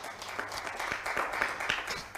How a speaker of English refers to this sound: Guys, can you give a hand clap and welcome all those people who are online?